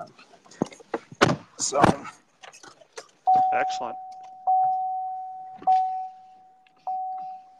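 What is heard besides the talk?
getting into a truck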